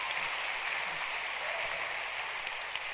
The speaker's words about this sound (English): Clap your hands for a pro. A pro.